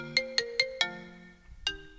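An outgoing phone call to the show's host rings out: four quick, bright electronic tones in a steady rhythm, a short pause, then one more tone, clear with no talking.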